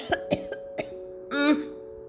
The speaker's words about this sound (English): The old man was trying to light his stove using some cow dung cakes. The fire was not catching and there was smoke all around. The smoke made the man's eyes water and he was coughing.